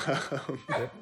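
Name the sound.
excited dog barking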